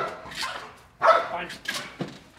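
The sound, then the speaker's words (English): Skiff, a Sheriff's Office police dog searching a building for hidden officers acting as suspects, barks several times in short, sharp, fairly loud bursts, the barks coming in a quick irregular series. “My dog's trying to bite you.”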